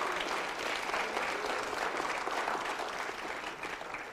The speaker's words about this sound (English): Can somebody clap their hand one more time?